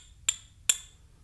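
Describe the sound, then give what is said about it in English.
Two sharp taps on a piece of glass, about half a second apart, made to demonstrate a remembered sound. Each is a bright, high clink with a brief ring, over a faint low hum and no talking. “3 taps on a piece of glass.”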